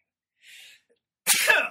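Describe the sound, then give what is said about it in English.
A single loud sneeze during a live audio recording: a soft breathy intake followed by a sharp, bursting explosive release, with no talking around it. “I get so upset about it, I sneeze on live audio.”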